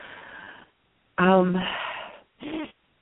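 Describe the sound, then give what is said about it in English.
A slow, audible inhale through the mouth, followed after a brief pause by a long, voiced sighing exhale and a shorter breathy sigh. “and I'm breathing.”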